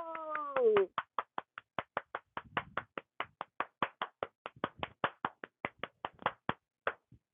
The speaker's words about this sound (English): I want you to clap for yourself. So give me 1 second and we're going to do these claps right now. We're going to do this for 10 seconds. Let's do this. Ready? Go!